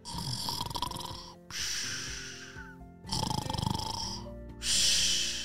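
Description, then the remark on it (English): A voice imitating Fluffy the chicken snoring: four loud, raspy breaths alternating inhale and exhale in a steady rhythm, each drawn out and buzzing, with no talking. “Have you ever heard a chicken snore?”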